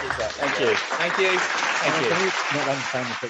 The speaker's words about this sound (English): Can you press the booing? Give me the box. I'm not pressing the booing. I'm putting that applause.